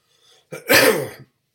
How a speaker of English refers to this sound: that way you can hear me cough every once in a while.